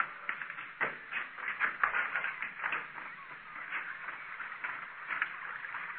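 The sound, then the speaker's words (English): Steady rushing and gurgling of water flowing below a cave chamber, a continuous hissy wash with small irregular splashes and ripples throughout, at moderate loudness and with no voices. “Hear that? She was right. There's water down there.”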